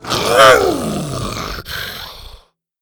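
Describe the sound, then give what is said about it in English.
A scaly creature gives a loud, pained roar as a dart is yanked from its leg. The roar rises sharply, then slides down into a long, raspy groan that rumbles on for about two seconds before stopping abruptly, likely a human voice imitating the creature. “With a hard tug, Bo yanked the dart free, and Buck roared in pain.”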